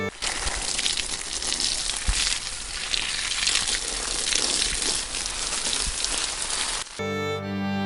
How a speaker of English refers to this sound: After a while, he came back with a big carton and started pouring white colored liquid all over the papers and on me.